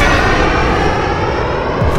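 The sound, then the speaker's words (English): A loud, steady jet roar fills the whole moment, like a fighter plane passing overhead, dense and rumbling with no voices over it. “There's a pasta and ants made fighter jet coming.”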